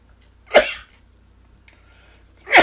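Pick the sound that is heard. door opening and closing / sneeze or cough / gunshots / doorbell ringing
sneeze or cough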